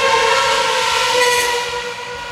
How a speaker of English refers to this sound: That was an Ayrton Senna McLaren. Doesn't that sound like a real Formula One car? Bit different to the modern ones.